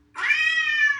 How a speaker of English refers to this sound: We're going to do our two different cat sounds. See which one you found more appealing. Tell us which one you think is cuter.